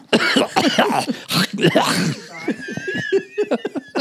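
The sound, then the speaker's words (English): A burst of harsh, repeated coughing and throat clearing, several rough hacks in quick succession, trailing off into softer, choppy voiced sounds and short breathy bursts. “This is our cough break.”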